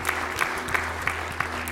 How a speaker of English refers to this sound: Would you clap your hands and rejoice? Thank the Lord tonight.